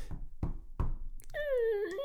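A door closing effect: three dull, low thuds in steady succession, followed by a long, high, wavering squeal-like creak that slowly dips in pitch and holds to the end.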